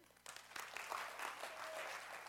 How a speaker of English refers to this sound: Everybody just clap your hands this morning. Let's wake up.